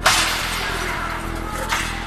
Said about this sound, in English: we all heard this loud crack from a window being hit. It was followed by another, and another.